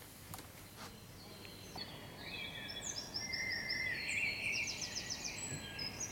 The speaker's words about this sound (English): One of the things people comment on is that during this pandemic, there's more birdsong. This is the noise outside my window.